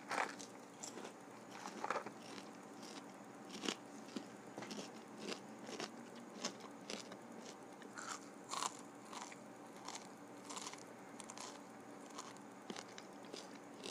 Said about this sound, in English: Some people like to hear the crunches. There's a whole culture out there called ASMR. If you enjoy the sounds, the soundscapes, the orchestra.